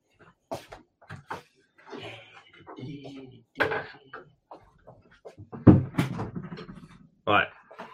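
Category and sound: household object, door banging shut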